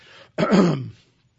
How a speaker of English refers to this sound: I don't know why I started coughing all of a sudden. The air's bad, lots of pollen.